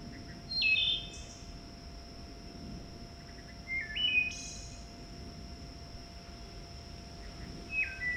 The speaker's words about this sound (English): I want to see if you or anybody can identify this bird by its song